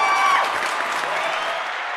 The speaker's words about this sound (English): We gotta give our guy some applause real quick. So you gotta hit your applause button too.